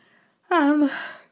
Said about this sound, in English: So excuse my yawns, but as you know, this is just mentally and physically exhausting.